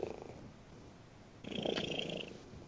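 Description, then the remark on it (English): A cat sitting on a person's lap purrs right up against the microphone, a low rumbling drone that swells louder partway through, with no one speaking over it. “That's either a giant cat, or she's really close to the microphone.”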